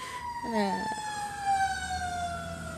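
A fire engine siren wails steadily, its tone sliding slowly downward as it passes outside an open window on a snowy, 32-degree morning, with faint traffic rumble underneath and a brief voice sound near the start.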